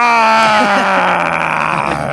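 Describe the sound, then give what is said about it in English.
Loud, sustained male voices roar together for about two seconds, a strained, steady bellow with a slight upward waver in pitch and no pauses. “Gentlemen, are you ready to roar?”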